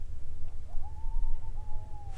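A faint coyote howl in the distance: one thin, wavering high note that rises slightly, holds for over a second and dips at the end, over a steady low rumble with no talking. Coyotes are calling back and forth to each other.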